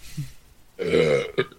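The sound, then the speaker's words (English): A single loud, drawn-out burp rumbles for about half a second, ending with a brief throaty catch, after a faint low murmur at the start. “And he burps, yes.”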